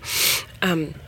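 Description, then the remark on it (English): A person in an airport coughs once: a harsh, breathy burst followed by a short voiced rasp that drops in pitch, over quiet background murmur. “You're coughing. I don't know if you could even hear that, but there was coughing.”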